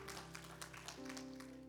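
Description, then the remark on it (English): Congregation clapping as a steady, dense patter of many hands, a hand clap of praise to the Lord, over sustained organ-like chords that shift to a new, brighter held note partway through. No voices stand out. “Come on, y'all give the Lord one more hand clap of praise.”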